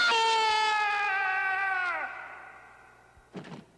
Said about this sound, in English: So he just pushes air and then stumbles right over the hobo. And gives out this hilarious Wilhelm-esque scream.